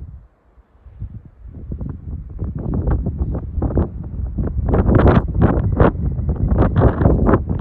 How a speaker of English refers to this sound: Yes, you can feel the tree waves like an ocean, sound like the ocean waves, but this is a mountain, it's a tree waves.